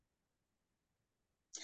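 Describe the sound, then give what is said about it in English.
A sudden, loud sneeze bursts out near the end after a long stretch of near silence, a single sharp explosive puff of breath with no talking around it. “Oh, God bless you, esteemed ….”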